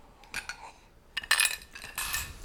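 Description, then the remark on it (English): Steel ice cubes clink and rattle against a glass during a toast, in a few bright, metallic bursts, a short jingle followed by two louder clattering rolls, with no one speaking. “Let's cheers it one more with game. These steel ice cubes.”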